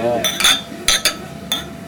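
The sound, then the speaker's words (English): Several beer glasses clink together in a toast in quick, uneven succession, bright ringing taps, with a faint murmur of voices in the background. “Well, cheers to that, guys.”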